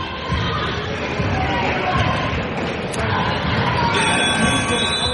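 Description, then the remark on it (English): A loud, steady crowd roar fills a gym at the end of a basketball game between Owatonna and North Grand, then the sustained electronic game-ending buzzer blares over the noise near the end and keeps going, with the final score 89 to 54. “As the buzzer sounds, final score, Owatonna 89, North Grand 54.”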